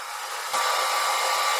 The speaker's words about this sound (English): I'm in the basement and the water heater's like 2 feet away from me.